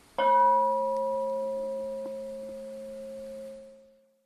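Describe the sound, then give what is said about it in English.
A single bell is struck sharply, then its deep, steady tone rings on for several seconds, gradually fading away with no one speaking. “And then maybe other times we can practice more intentionally, you know, to ring the bell, to sound. And of course the bell is a great example of anicca, change, sound, changing.”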